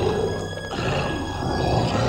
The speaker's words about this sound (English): Sounds oddly like a lion. Yes, very much so. Looks kind of like a monkey with no skin and gigantic teeth.